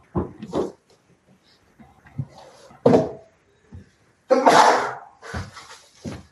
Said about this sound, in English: Bless you. Thank you. I'm a bit sick today. Have a cold.